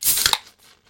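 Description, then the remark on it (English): Cans of Founders beer, including a nitro can, being cracked open: a loud, bright hiss of escaping gas with two sharp metallic snaps close together, then a soft fizz that quickly fades. No one speaks. “We're going to go in 3, 2, 1. Crack 'em.”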